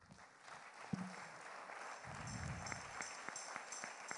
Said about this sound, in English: Praise the Lord. Let's clap for God.